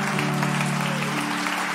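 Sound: audience applauding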